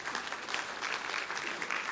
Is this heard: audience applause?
yes